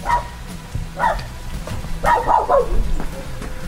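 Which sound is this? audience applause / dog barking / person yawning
dog barking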